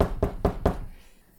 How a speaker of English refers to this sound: Right about this time, you guys hear the door of your room knock.